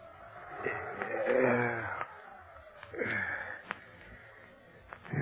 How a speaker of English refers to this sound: Oh, what's that? Oh, the wind, I guess. I mean, I hope.